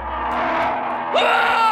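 A man's loud, strained cry of pain as bears slash his chest with their talons and sink their teeth into his flesh; it holds steady, then breaks upward into a higher, harsher scream near the end, unbroken throughout.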